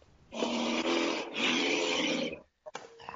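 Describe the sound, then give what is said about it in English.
A loud wolf growl rumbles for about two seconds in one long, raspy snarl with a brief catch partway through, then cuts off abruptly into near silence. “And now he turns to you and unleashes a growl which shakes the bars of the jail cell.”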